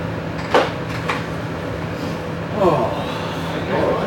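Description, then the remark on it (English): Glass bottles rattle and clink inside a boombox being carried by someone climbing down, with a couple of sharp knocks followed by a longer jostling clatter, all over a steady low hum. “No, he's got and he's got his boombox with him. He's got bottles in it. Yeah. Yeah. I can hear it climbing down. I heard rattling.”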